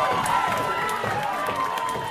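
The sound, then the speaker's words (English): A large wrestling crowd roars and cheers wildly for the wrestler Willow, a loud, continuous wall of excited voices and scattered claps that never lets up. “And this crowd going mad for Willow.”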